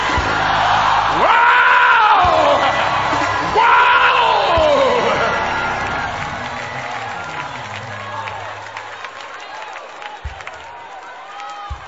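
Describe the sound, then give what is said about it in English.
A crowd hollers "shut the door" in unison, two loud rising shouts in quick succession, then the noisy group response fades into scattered murmurs and a few sharp claps. “Somebody holler, shut the door.”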